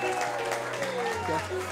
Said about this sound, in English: Give God praise all across this room. You guys are giving golf claps. Give God praise.